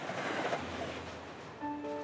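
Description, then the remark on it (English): A train heading down to Bordeaux, France, in June 2019 rumbles steadily along the rails in a broad, continuous roar, and near the end a few sustained tones rise above the noise. No one speaks. “In June 2019, Gracien took the train down to a castle in Bordeaux to compete in the first round of Objectif Top Chef.”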